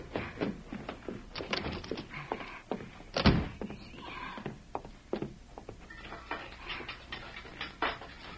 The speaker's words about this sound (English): As Victor galloped away, Peg ran to the house and hurriedly entered.